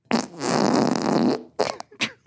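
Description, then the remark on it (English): A loud, buzzy fart holds steady for over a second, jumps up in pitch, then sputters out in two or three short, clipped bursts. No voices. “Number three, though, it also has the same octave change.”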